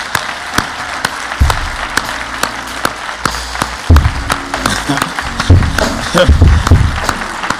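An audience applauds steadily, a dense patter of many hands clapping with sharper individual claps popping out, while low rumbling swells and faint cheering rise underneath midway through.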